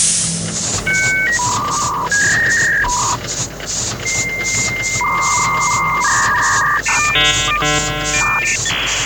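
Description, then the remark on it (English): A dial-up modem connecting: shifting beeps and whistling tones over a harsh, steady hiss, ending in a burst of warbling, stacked electronic chirps. Loud throughout, with no voices. “Well, you know, right after you launch the steam-powered modem, you should be able to tell, right?”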